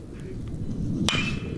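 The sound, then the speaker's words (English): A single sharp crack of a bat hitting a chopper foul ball, batter Michael Campagna, in the bottom of the third inning of a college baseball game between San Francisco (USF) and BYU, bright and ringing, rising out of a steady low crowd murmur and fading quickly. “And that'll be a chopper foul.”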